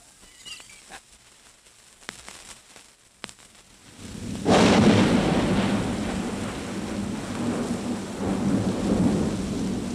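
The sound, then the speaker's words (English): Quiet, sparse crackles give way around four seconds to a sudden loud roll of thunder that rumbles on with a steady wash of heavy rain, played from a vinyl record at 45 rpm rather than real thunder outside. “and it's not thundering outside, but just the record, okay?”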